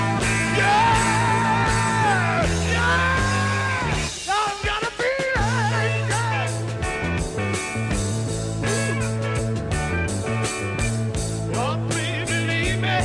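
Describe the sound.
A loud rock song plays with a singer letting out raw, screaming vocals over heavy drums, bass and guitar, the shouted lines rising and breaking in the middle of the track.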